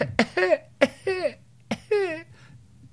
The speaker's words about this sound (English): Sorry. Ooh, wouldn't be a podcast without me giving a little cough.